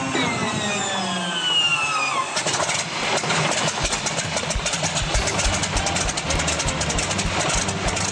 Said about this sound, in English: the sound of the P-40 starting up. That just means we're getting fired up again.